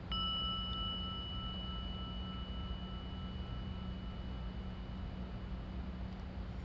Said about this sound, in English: So here we go. Just listen to the sound of the gong.